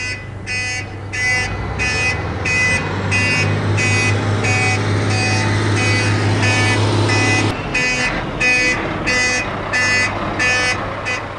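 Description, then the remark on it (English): A truck backing up: its reversing alarm beeps steadily and loudly over a deep idling engine rumble. The engine drone drops away partway through while the rhythmic beeping carries on to the end. “What if I need to back the truck up?”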